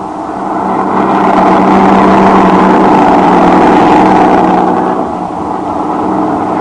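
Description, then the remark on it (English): A truck engine hums steadily at a low pitch as a carnival's truck drives away from a town, its loud drone holding even for several seconds before easing slightly near the end. No voices are heard. “And in Robertson's truck, a few hours later...”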